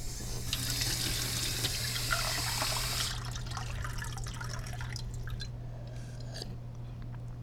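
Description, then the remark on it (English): A kitchen faucet runs tap water steadily for about three seconds with a bright rushing hiss, then shuts off, leaving scattered drips and light splashes against a low steady hum. “You know what this tap water tastes like? A driveway.”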